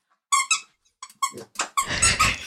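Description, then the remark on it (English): A squeaky toy is thrown and squeaks several times in quick, uneven bursts, ending in a longer, raspy squeal. The sound is fairly loud, with no talking. “Will you throw that squeaky toy?”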